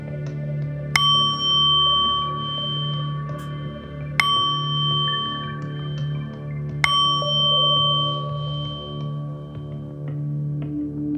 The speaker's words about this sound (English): You will hear three bells. Upon the three bells, repeat to yourself, Om, three times.